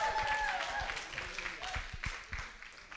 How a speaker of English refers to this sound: Are you happy to be in the house of the Lord? Show it by clapping and making a noise unto the Lord.